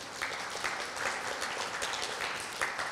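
A crowd claps steadily for a house group leader invited up as a volunteer, a dense patter of many hands filling the room at moderate volume, with no voices breaking through.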